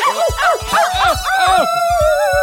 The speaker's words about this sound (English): These crazy dogs are making me so mad!